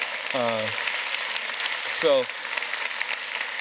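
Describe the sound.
Steady, dense clapping from a crowd fills the background at moderate volume, while two brief voiced sounds, like short calls or exclamations, rise above it.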